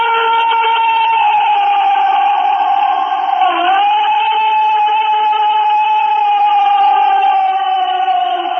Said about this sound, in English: Well, I've got a couple of sounds that are said to be Bigfoot.